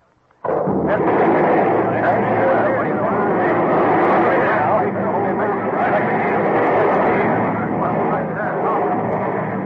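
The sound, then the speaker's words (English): A blasting shot in a tunnel bursts in abruptly after a moment of silence, then a dense, loud rumbling roar carries on without letup to the end. “Why, that one shot has done more in 1 second than the whole drilling gang could do in a week.”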